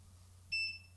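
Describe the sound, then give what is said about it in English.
A single short electronic beep, a clean high-pitched tone lasting about a fifth of a second, rings out clearly over a low steady background hum. “Beep.”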